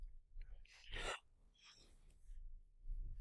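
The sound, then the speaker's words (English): A single breathy yawn swells with a sharp rush of air near the start, then trails off into softer exhales and quiet breathing, with no talking. “you can hear a yawn.”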